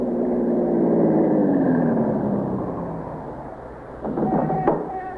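A police car's engine drones steadily as it drives to a liquor store on East 75th Street, its pitch sliding gradually downward as the vehicle slows. Near the end a few faint clicks and knocks come in over the fading hum.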